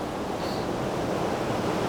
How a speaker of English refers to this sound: Here we go. Right, this is it. More waves. And another set coming through, another wave.